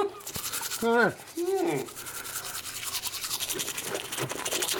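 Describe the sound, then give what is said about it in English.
Steady scrubbing of a toothbrush against teeth, a rapid rhythmic rasp running throughout, with a brief muffled vocal sound near the start. “All right, that's the end of the toothbrush bit.”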